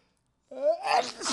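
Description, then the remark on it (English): A single loud sneeze from a person whose allergies are set off by a cat: a short voiced intake rising into a harsh, breathy burst, heard alone after a brief silence. “Man, this cat's driving my allergies crazy.”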